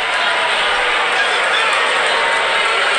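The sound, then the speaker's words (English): A large stadium crowd booing Andrew Luck as he walks off the field, a dense, steady roar of many voices that stays loud and unbroken for the whole stretch, with no single voice standing out. “those people that booed him probably Monday morning after the buzz wore off feel really bad”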